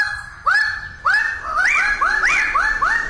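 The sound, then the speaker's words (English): Loud, rising crowing calls of male Raggiana birds of paradise in lowland forest on the island of New Guinea in early morning, several birds calling in quick succession and overlapping, each call a harsh upward-swooping note, with no one speaking. “The lowland forest erupts with the crowing calls of male Ragiana birds of paradise.”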